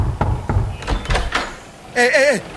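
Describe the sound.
Loud, heavy pounding on the door of a home, five or six forceful blows in an uneven burst, followed by a short raised voice.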